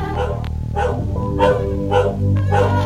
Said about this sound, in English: Just inside the gate was a small plastic dog, mounted to the ground by a spring. As the gate shut and locked behind her, the dog began to run back and forth, and another small speaker emitted a tinny barking.